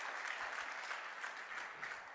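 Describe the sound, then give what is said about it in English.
An audience at an Easter service claps together in steady, dense applause, a continuous crackle of many hands at an even loudness with no voices heard. “God is good, and all the time, amen. Clap.”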